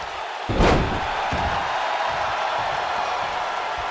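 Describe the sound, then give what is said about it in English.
A single heavy thud as The Rock is knocked down onto the mat by a super kick from Rob Van Dam (RVD) in a wrestling match rings out early, followed by a steady roar of a large crowd that continues to the end. “Oh, super kick. Knocks The Rock down.”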